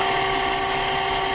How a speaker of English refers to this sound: The fan on the computer just kicked on, right? Wow, yeah.